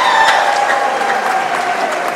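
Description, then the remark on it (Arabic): A church audience at a Christmas celebration claps together in a dense, steady wash of applause that stays loud and even throughout, with no voices standing out above it. “هللو صفقوا.”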